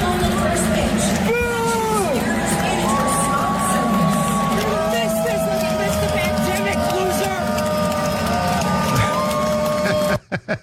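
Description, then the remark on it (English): A large crowd at a Seattle Mariners baseball game boos Dr. Fauci loudly and steadily, long drawn-out jeers layered over a dense roar of voices, cutting off abruptly near the end. “There you have it, Dr. Fauci getting booed.”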